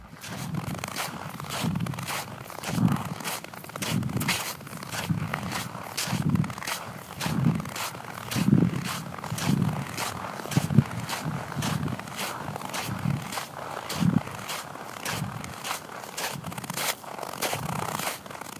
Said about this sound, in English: Right crack, left crush, crush, crush. Left crack, right crush, crush, crush. The biomechanics of a step amplified, my body singing through snow. Here is a recording of the two sounds of crunching snow from February 20th, 2018.